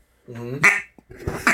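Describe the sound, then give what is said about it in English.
Two loud, raspy quacks blown on a duck call. The first is drawn out with a nasal buzz before breaking off, and the second is shorter and choppier. “A quack is this.”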